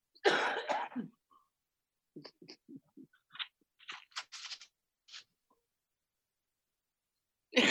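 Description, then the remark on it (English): A loud, harsh cough from a person with a cold bursts out, followed by a few softer throat-clearing hacks and small sputtering noises, then a brief pause before another breathy cough begins. “What was that? I had to cough.”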